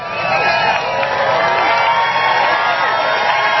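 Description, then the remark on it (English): A large crowd at a political rally at night cheers and whoops continuously, a dense wall of overlapping voices and shouts at steady volume for several seconds, with no single speaker standing out. “You have to know that every Democrat is against the things that the people here tonight, and this is an incredible crowd, the people here tonight.”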